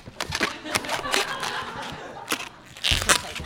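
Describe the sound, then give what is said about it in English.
Scratchy rubber squeaks and crinkly twisting sounds come in uneven bursts as an old balloon is wrung and bent into the body and back legs of a balloon animal, with a louder squeal near the end. “It's funny, like, I don't buy these balloons very often. I can feel that this one's kind of old, so it actually might pop.”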